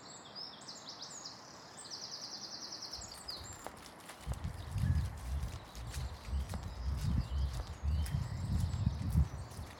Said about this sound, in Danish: Se, nu kommer damen ind i folden der. Hun står og hiver og flår i den lille hest. Den er så umiddelbart stedig. Den vil et eller andet ikke må.